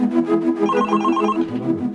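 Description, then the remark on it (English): A telephone rings with a steady, warbling electronic tone that repeats in quick pulses. It is fairly loud, with no voices over it. “Was that him on the phone before?”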